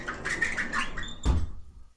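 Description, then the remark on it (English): A small door creaks with a wavering, high squeak for about a second, then shuts with a single sharp thud that quickly fades to quiet. No voices. “Little door closing. Little door close. For privacy purposes.”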